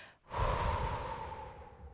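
A single deep, airy, steady breath filling the lungs, rising quickly after a brief pause, then exhaled through the mouth and slowly fading over a couple of seconds. No one speaks.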